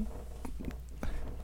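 A cat named Pocket Cat purrs softly, a low steady rumble running throughout, with a few brief rustling and tapping sounds over it. No one speaks.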